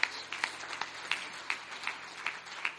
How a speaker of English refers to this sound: Hallelujah. Hallelujah. Clap your hands to the Lord again.